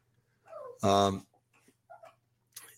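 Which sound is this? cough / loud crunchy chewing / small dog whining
small dog whining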